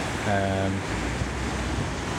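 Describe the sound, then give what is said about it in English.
A steady, loud roar of high flood water rushing below a bridge just after Bridge Street in Ramsbottom churns without a break, with a brief voice fragment near the start and some wind buffeting the microphone. “I'm currently stood on the bridge, just after Bridge Street, in Ramsbottom, and the flood water is really high.”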